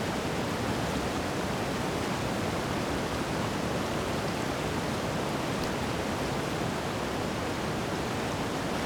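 A steady, dense roar of wind and rushing water fills the whole clip, loud and unbroken, like surf or a torrent, with no voices.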